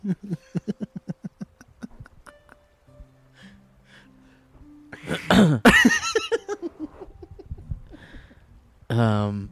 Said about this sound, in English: There's something about bringing the microphone up to your face to cough.